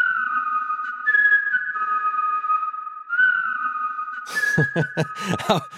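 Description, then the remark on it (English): A person whistles a short melodic hook for a song, clear sustained notes stepping between a few pitches for about four seconds, then a burst of busier, louder sounds cuts in at the end. “beef up the hook with a whistle borrowed from an indie classic released a few years prior. I was doing the whistle.”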